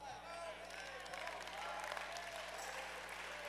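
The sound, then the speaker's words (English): A church audience, with people up in the balcony, claps steadily, a dense, continuous wash of many hands at an even level for several seconds, with crowd voices faintly mixed underneath. “I wonder if I get them to clap up in the balcony today.”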